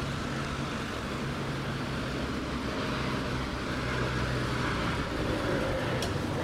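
A car's steady rumble on a road, a broad, constant roar of engine and tire noise with a low hum underneath, holding at an even level throughout with no voices.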